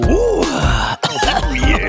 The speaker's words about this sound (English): Oh, yeah. Clearing out that COVID cough.